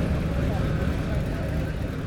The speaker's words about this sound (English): So now the final few cars are coming through Farnham before the road closure orders take effect for this afternoon's event.